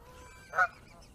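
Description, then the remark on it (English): A single short goose honk rings out, loud and nasal, against a quiet outdoor background with faint bird calls and no talking. “I'm assuming that they're geese because they were hanging out with the geese.”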